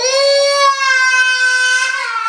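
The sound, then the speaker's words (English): A toddler in a tantrum over not being allowed to eat Miller's dog food, recorded on a video, wails in one long, sustained cry, high-pitched and loud, with a slight break partway through before the sobbing tone carries on steadily to the end. “Oh my God, you can actually hear the tantrum happening.”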